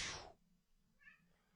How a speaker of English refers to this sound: Oh, Jarvis, settle down. My cat is making noise in case you, the most famous cat in San Antonio just is for some reason chewing my wife's sneakers.